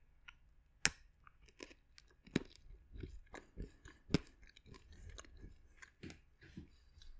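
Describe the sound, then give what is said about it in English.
Loud, sharp crunches of someone chewing hard, crunchy sweets, a series of irregular brittle cracks and grinding bites over several seconds with no talking. “And this is what it sounds like when I eat it.”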